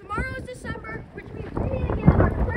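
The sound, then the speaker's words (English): Strong, cold November wind outdoors buffets the microphone with a low, rumbling roar that swells louder in the second half, while indistinct voices talk briefly near the start. “You both probably can't hear us because it's really windy.”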